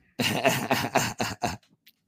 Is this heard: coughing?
yes